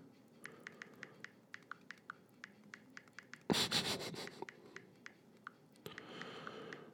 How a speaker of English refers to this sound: Hello. I'm typing.